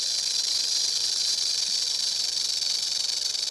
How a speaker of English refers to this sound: Rattlesnake. Prairie rattlesnakes, that's prairie right. Prairie rattlesnakes. That's I mean, right. It's not mountain rattlesnake, prairie rattlesnakes.